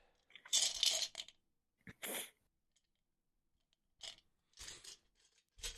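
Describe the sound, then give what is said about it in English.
Small hard dice, including a purple D8, a percentile die and a D6, clatter and rattle as they're picked up and shuffled in a hand, several short bursts of clicking separated by brief quiet pauses, with no one talking. “My percentile will be that one. D6.”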